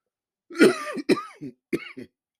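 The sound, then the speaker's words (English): A person whose throat is dry from excitement and talking clears their throat and coughs several times in quick succession, a fairly loud series of rough bursts with brief pauses between them and no talking. “The excitement and the talking getting the throat dry.”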